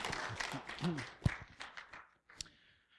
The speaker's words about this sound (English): Again, round of applause